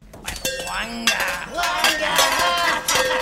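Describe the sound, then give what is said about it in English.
Pans and dishes clink and clatter in a kitchen, a busy run of ringing metallic knocks and scrapes, continuous throughout. “Well, a thing that I would not want to do is to go into that break room with those bugs and see if there's any pans in there.”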